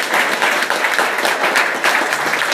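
An audience bursts into sustained applause for a priest, dense overlapping claps forming a steady, loud roar of hand-clapping that holds level throughout with no voices rising above it.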